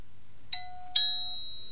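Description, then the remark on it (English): An electronic doorbell chime from an electronic memory matching game, played after pressing card 1, sounds twice in quick succession, a two-note ding-dong with bright ringing tones that decay slowly, clear with no talking. “So what I've got to try and do now is find another button where the doorbell goes and then pair the two up.”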